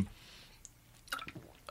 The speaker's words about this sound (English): I'm just going to take a little drink of water here because I need it.